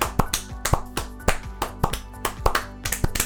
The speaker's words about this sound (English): Let's go ahead and give ourselves a round of applause for making it this far. I'm not going to stop until all three of us are clapping.